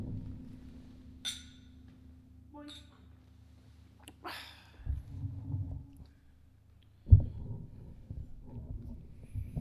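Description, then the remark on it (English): A few light, bright clinks of glasses holding an 80-proof, high-rye spirit ring out at intervals in a toast, over a low steady hum, followed by soft muffled bumps and handling noise. “All right, let's go ahead and get a sip in, but cheers.”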